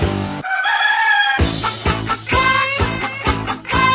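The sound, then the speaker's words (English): A rooster crows over a pounding musical beat, followed by rhythmic chicken clucking sounds woven into the steady, loud backing track. “A crazy chicken chasing me all over town.”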